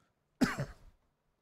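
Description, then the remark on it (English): A single abrupt cough bursts out and trails off in a rough, throaty rasp over about half a second, then silence. “Not a COVID cough, I hope.”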